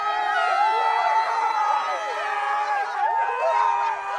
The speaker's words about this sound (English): The crowd cheers. Another year of Creeksgiving is kicked off.